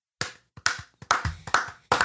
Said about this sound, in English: Oh, Can we just stop here and give them a round of applause?